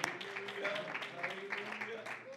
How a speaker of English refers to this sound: Let's give the Lord a hand clap of praise for his word to our hearts today.